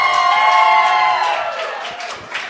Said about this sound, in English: Just a typical Thursday night crowd in Smashville, Roman. You know, just a ho-hum, school night, work night, pretty quiet in the building.